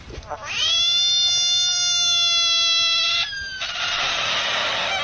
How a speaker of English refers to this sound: Shall we hear the frog screaming again? Yeah, let's hear it one more time.